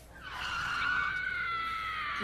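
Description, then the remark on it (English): A loud, sustained car tire screech sound effect rises quickly and holds a shrill, steady squeal for about two seconds, alone with no talking. “Yeah, you got to do the screech, the screech sound with the scream.”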